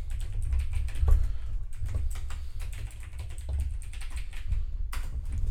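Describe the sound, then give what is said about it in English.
Steady, rapid clicking of fingers typing on a computer keyboard, fairly quiet, with a low background hum and no voices, as entries are made in a spreadsheet tracking NFL game picks. “By the way, if you hear us typing while we're doing this, we have a spreadsheet where we keep all of our games.”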